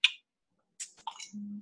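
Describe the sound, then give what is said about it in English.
A beer can of pastry stout brewed with cinnamon, cocoa nibs and toasted coconuts cracks open: a sharp metallic click, a short pause, then a snap and a quick burst of fizzing hiss, followed by a low steady hum. “Crack that open.”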